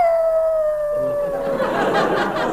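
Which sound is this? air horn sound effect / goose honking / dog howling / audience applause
dog howling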